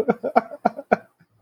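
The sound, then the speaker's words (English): A person coughs four times in quick succession, a harsh run of evenly spaced coughs followed by a brief quiet tail. “Hey, you're coughing.”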